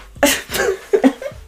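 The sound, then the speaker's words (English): A fairly loud fit of coughing: four or five quick, harsh bursts in an uneven rhythm, with no talking around them. “Excuse me, I coughed.”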